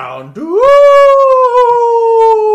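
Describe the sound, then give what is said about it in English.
A person imitates a Houndoom's howl: a brief murmur, then one long, loud tone that swoops upward and holds steady, slowly sagging for about two seconds. “Alright, well, we're almost at the end, Hardcore, so let's try a howl.”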